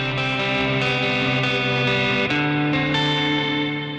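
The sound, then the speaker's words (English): Thick, heavily distorted sustained tones packed with buzzing harmonics from a hard-driven Baby Audio distortion plugin, loud and continuous, shifting to a new chord partway through with no voices present. “Yeah, you can really drive the distortion.”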